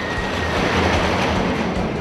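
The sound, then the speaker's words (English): A high-speed roller coaster train rattles loudly along its track, a dense, continuous rumble and clatter that stays steady for the whole moment, with no voices. “One thing is universal though, there will always be a track and high-speed roller coaster trains moving on it.”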